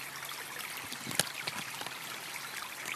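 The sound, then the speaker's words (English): Water trickles and babbles steadily along a small stream, a continuous gurgle with brief splashy pops rising above the flow. No one speaks. “Oh, honestly, yeah, I like the sound of this water.”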